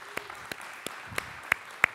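Applause made of six sharp, separate claps in a steady rhythm, roughly three per second, with the later claps louder. The clapping is sparse rather than a dense crowd, and no one speaks.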